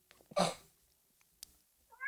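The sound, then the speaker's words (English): A cat lets out a loud meow, followed by a brief quiet stretch with a faint tick, then starts a second rising meow right at the end. No one speaks. “Punctuated by the cat and me sneezing.”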